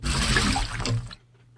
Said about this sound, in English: I am putting water in your snorkel.